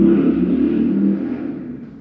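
A motorcycle engine drones past outside, a loud, steady rumble with a low throaty hum that begins to fade away after about a second as it moves off. No one speaks.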